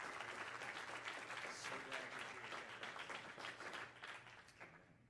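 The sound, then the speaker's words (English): A church audience applauds to welcome a visiting minister from Luxembourg, with dense, sustained clapping that stays loud for several seconds before gradually thinning and fading toward the end. “Would you clap your hands and make”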